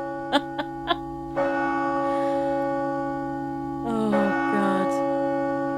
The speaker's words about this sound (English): We play the Angelus now, just to reconnect. You're meant take to a stay moment quiet. To pause.